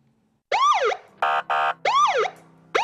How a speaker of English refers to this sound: Sirens blaring, red and blue lights flashing.